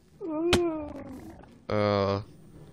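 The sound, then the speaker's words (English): A video game sheep in a wool farm bleats twice: first a drawn-out, falling call cut by a sharp click, then a short, loud, buzzy bleat, both clear with no talking. “Climb out, quickly, before the sheep does.”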